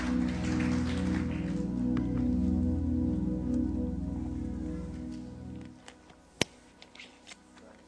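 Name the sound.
audience applause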